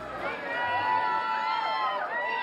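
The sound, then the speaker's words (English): A dense crowd of fans roars and cheers at a hotel and casino as a musician appears to sign some of his artwork, many high voices screaming and shouting over one another in a loud, continuous wall of excited noise. “when Sir … made an appearance to sign some of his pieces, the crowd roared”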